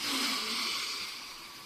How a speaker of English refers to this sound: Sometimes it involves simply breathing. You know, breathe in through your nose.